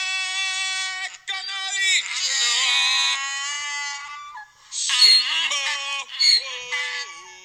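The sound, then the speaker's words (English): A donkey brays loudly in long, strained, wavering calls that rise and break, with a man's voice joining in underneath as if singing along. “That donkey is like harmonizing with that man.”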